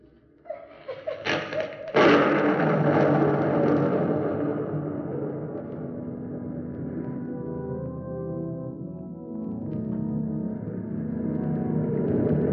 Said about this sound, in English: The surf booms in. It is no longer silent. Listen carefully, and you will see that it is like the sound of the whispering of people. And that whisper will grow larger, louder. Listen carefully. Do you hear?